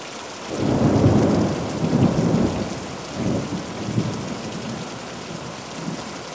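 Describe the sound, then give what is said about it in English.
Rolling thunder rumbles through a steady downpour of rain, with several low booming swells rising and fading over constant hissing rainfall; no voices are present. “On a dark and stormy night in the 1700s, Charles Totman Loftus was enjoying a family dinner along with his second wife and his youngest daughter named Anne.”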